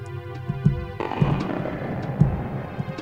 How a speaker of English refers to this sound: Inside Jabu Jabu's belly. That's where I'm going right now. Here it is. It's loading up. Oh, yeah. The bubbles. There's that stomach ache noise. Stomach gurgling. Wow. I never noticed. You're right. It's gross.